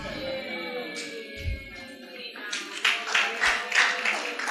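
A crowd breaks into scattered clapping that builds into a steady patter of applause, rising in loudness after a quieter, murmuring start.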